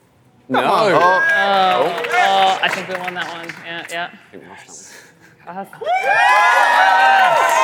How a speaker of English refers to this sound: Audience, it's time to cheer.